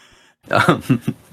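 A single loud burp, rough and croaky, lasting about a second with a few guttural pulses before trailing off. No talking.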